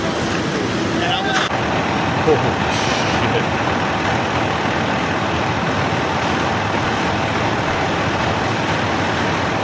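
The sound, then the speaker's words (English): A steady, loud rumble of multiple idling fire trucks and emergency vehicles at a fire, with continuous roadway-like noise, a brief hiss like an air brake, and faint muffled voices in the background. “So you can see multiple trucks, all sorts of firefighters, multiple volunteers, multiple people, emergency vehicles.”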